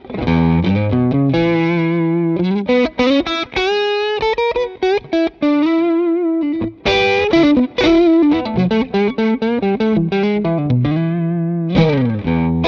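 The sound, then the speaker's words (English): An electric guitar, a Strat on the neck pickup, plays through a Clarksdale TS-type overdrive pedal (bass and mid at noon, treble about 1 o'clock, gain about 11): a melodic lead line with mild overdrive, sustained singing notes and quick runs, bends and vibrato on held tones, steady and fairly loud throughout with no voices. “So let's move on to the Clarksdale. Once again, this is like a TS type of circuit.”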